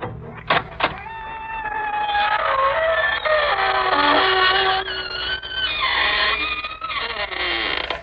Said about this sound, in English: This is your host to welcome you through the creaking door into the Inner Sanctum.